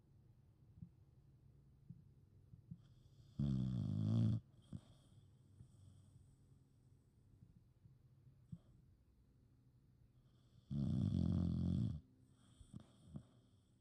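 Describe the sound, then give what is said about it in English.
Two loud, drawn-out snores very close to the microphone, each lasting about a second with a rumbling, raspy texture, separated by several seconds of quiet breathing and faint room hum. “as she snores into the mic next to me.”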